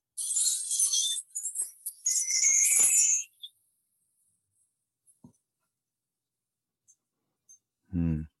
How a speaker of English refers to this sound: So this is a tree chime thing. It's all made out of keys getting smaller and larger, made for me. Here, this is for India.